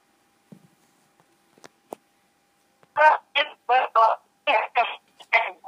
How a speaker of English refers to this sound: Your phone is breaking a bit. Can you hear me? Hello?